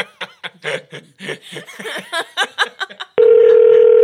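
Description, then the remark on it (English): Chuckling and snickering fill the first few seconds, then a loud, steady telephone tone cuts in abruptly and holds until the end, as a test call is placed to a phone. “Do you want to try like calling me or something?”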